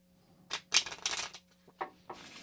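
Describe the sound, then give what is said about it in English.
Riffle shuffle of a deck of playing cards: a burst of crisp, papery fluttering followed by a few shorter snaps and a final brief riffle, with no voices. “Put this one on top of that one. And then shuffle, please.”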